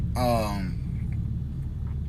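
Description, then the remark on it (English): A steady low rumble fills a closed car interior inside a parking structure, with a brief voiced sound near the start before the muffled, boomy ambience carries on alone. “And just so you guys know, I am recording inside of a car in a fucking parking structure.”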